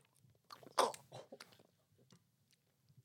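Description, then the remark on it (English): Wet slurping and chewing on a soft snack filled with ranch: a loud moist burst followed by a few squelchy bites, then quieter intermittent mouth sounds fading out. “I guess slurp it.”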